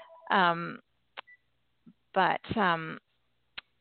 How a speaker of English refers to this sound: Sorry, my phone's ringing in the background and causing me distraction. I thought I shut it off.